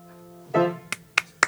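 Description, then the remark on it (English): Three sharp, crisp hand claps in an even, quick rhythm, each a clean separate slap, following a brief low hum and a short tonal swell. “Am I clapping? You are clapping.”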